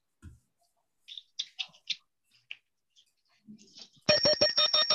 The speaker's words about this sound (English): But as soon as you plug it up, it'll give you a bunch of beeps saying that it's armed and you have your controller.